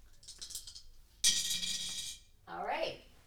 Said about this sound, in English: So all right. So can we roll the dice? Rolling them.